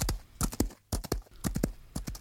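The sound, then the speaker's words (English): Hooves of a galloping horse pound in quick three-beat bursts, a steady driving rhythm of sharp thuds with no voices. “The monster then tore the saddle from the horse, mounted it, and started off at full speed across the plains.”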